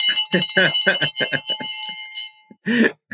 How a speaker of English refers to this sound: Well, let me ring this victory bell real quick. Come on.